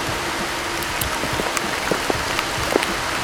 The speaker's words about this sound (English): Oh, here comes the rain.